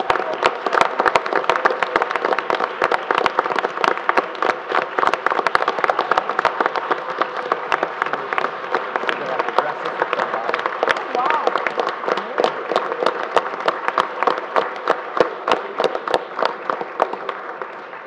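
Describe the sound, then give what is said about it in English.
A sustained round of applause from a sizable crowd at a meeting for retirees, dense overlapping claps going steadily and loudly for the whole stretch without a break. “While they're getting their picture taken, if we could have one more round of applause for all of our retirees.”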